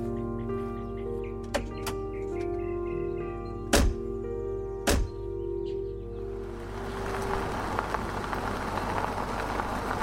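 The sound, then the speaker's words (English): A steady engine hum, then two sharp thuds like car doors slamming about a second apart, followed by a swelling rush of engine and road noise as vehicles pull away. “They jumped back into their vehicles and drove off.”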